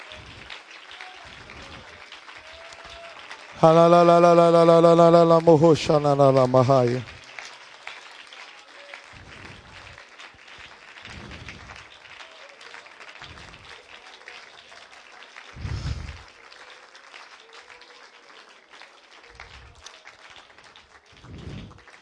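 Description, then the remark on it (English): A church audience claps hands unto the Lord while coming forward to the front, a dense, even patter that runs the whole way through, briefly overlaid early on by a loud, sustained, wavering voice before the clapping carries on alone. “Come on, clap those hands unto the Lord right now.”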